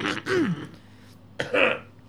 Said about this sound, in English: Sorry, everyone. I was just having a cough.